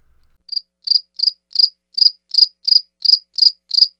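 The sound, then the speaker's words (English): Crickets chirp in a steady, evenly spaced rhythm, about ten bright, high-pitched pulses in quick succession against an otherwise silent background, clear. “Fucking crickets on the trade front.”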